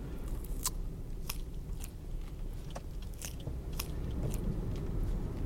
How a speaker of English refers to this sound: Everybody knows horses love carrots. I'm a horse man. Horse man. Give me that carrot.